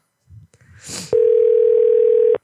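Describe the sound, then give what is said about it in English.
A steady, unbroken telephone dial tone hums at one mid pitch for over a second, loud and constant, after a brief burst of rustling and a soft breathy hiss. “That was not the number I meant to call.”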